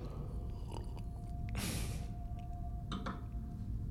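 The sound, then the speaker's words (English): A single short, airy slurp of someone sipping sake, a clear rice liquor, followed by a few faint wet mouth clicks and swallowing sounds over a low steady hum, with no talking. “Sorry, I had to take another sip of that sake.”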